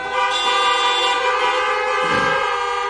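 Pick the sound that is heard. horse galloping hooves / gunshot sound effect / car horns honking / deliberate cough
car horns honking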